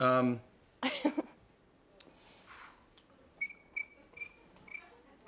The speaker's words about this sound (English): Those crickets? Those are crickets.